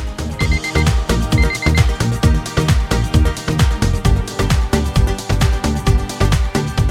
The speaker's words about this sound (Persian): دقت کردین شیرین ترین قسمت خواب 5 دقیقه بعد از صدای آلارم؟